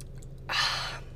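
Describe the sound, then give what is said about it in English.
A quick, faint sip of a strawberry lemon Poppy prebiotic soda, followed by a soft, breathy exhale of satisfaction, over a low steady background hum, with no talking. “I am trying their strawberry lemon flavor. Hold on, sip test real quick.”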